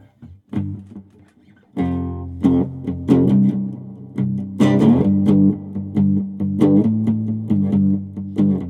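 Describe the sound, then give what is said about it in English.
An electric guitar, played live, strums chords with a heavy reverb wash, each strike ringing out and blurring into the next in a steady, fairly loud rhythm with no voices. “would you reach over and turn the reverb down to like 2?”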